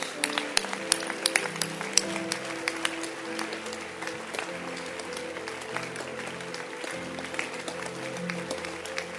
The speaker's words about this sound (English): If you love the Lord, keep clapping. We are ending the service.